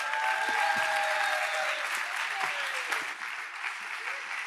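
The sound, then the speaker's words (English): An audience applauds a speaker at the end of a talk, clapping steadily, a dense wash of many hands with sharp individual claps scattered through it, sustained at a fairly even loudness throughout, with a few faint tonal whistles or cheers mixed in. “I know we just clapped, but that was awesome.”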